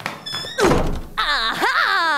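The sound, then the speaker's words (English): A door is barged open with one heavy thud, quickly followed by a loud, drawn-out vocal exclamation of "aha". “was barging down doors and saying, aha!”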